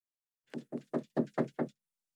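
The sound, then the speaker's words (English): Six firm knocks on a studio door in a quick, even rhythm, fairly loud, then silence. No voices. “No one knocks at the studio door.”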